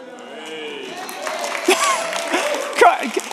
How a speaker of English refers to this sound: He's been in there for 20 minutes, barely able to move, and that's the applause you give him.